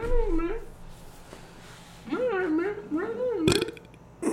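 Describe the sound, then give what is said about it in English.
A loud, drawn-out belch right up against the microphone, rising and wavering in pitch across several croaky pulses, with a sharp click near the end. “Yeah, and then we burp into microphones.”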